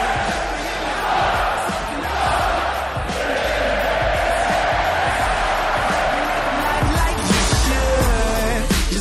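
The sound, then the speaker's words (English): A large hockey arena crowd roars and cheers continuously at a Gophers game, with the Gophers leading 5-1 and 4:07 left. A dense wash of voices with shouts and whoops rising out of it, steady and loud throughout with a few sharp knocks underneath. “This is the crowd.”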